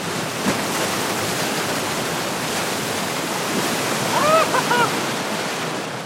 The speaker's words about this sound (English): The wave's about 10 feet wide, flowing over a man-made structure with platforms on either side so the surfer can jump on.